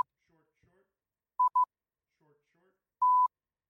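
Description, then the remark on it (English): A phone emits clear, steady electronic beeps in a repeating pattern: two quick short tones close together, a pause, then one longer tone. Faint murmured voices sit beneath them in the gaps. “Phone's just being goofy. For the record, the pattern that you think might be going is...”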